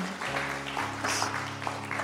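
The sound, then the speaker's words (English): An audience claps for Jesus in a steady, dense wash over sustained low keyboard chords, the clapping moderately loud and continuous for about two seconds with no voices. “If you want to clap for Jesus, you can do it better.”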